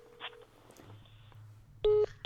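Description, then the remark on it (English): A telephone rings for an incoming call: two loud electronic tonal bursts arrive near the end, following a stretch of faint low hum and scattered quiet noises, with no talking. “I'm getting a phone call.”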